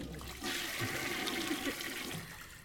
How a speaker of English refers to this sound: Can you put the sound effect of the toilet flushing?